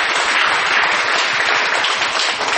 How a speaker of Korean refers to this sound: 연합 활동에 수고하는 분들에게도 큰 박수를 부탁을 드리겠습니다.